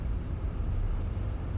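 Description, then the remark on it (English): A steady, deep rumble of ship engines mixed with wind and sea wash, heard at night on the open deck at the very back of a ship, where the submersible is launched, continuous and fairly loud with no voices. “I'm at the very back of the ship now, where they shove the sub off.”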